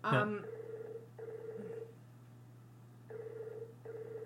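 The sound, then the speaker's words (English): A Skype call ring tone sounds in paired bursts, two short rings, a pause, then two more, steady and moderately quiet over a low constant hum, like a ringback heard through a phone line, as the call goes unanswered. “So, anyway, I have a hard time with the ringing.”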